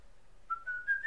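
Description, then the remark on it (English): A person whistles alone during an attempted ten seconds of dead air, a short run of three or four clear notes stepping upward in pitch, fairly soft, after a brief moment of quiet. “That's not dead air, damn it. That's just whistling.”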